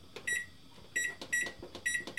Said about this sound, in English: And once you get your pan in the oven, set your timer for 15 minutes.